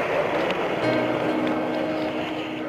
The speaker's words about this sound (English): Ignition sequence start. Apollo 11 rockets into space at 6:32 in the morning. 2, 1, 0. All engine running. Liftoff. We have a liftoff. 32 minutes past the hour. Liftoff on Apollo 11.